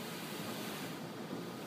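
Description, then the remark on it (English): Ocean waves give a steady, full rushing wash of surf that fills the whole short stretch evenly, with no voices and no distinct breaks between swells. “There's a reason for that wave that I had at the beginning slide.”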